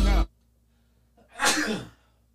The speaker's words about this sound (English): Fuck, excuse me. Memphis Bleek, man. Bless you, bless you. Thank you.